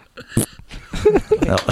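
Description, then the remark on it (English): A sharp, breathy cough bursts out, followed by a few rougher, voiced hacking sounds that rise and fall over a second or so. “I should get that cough looked at.”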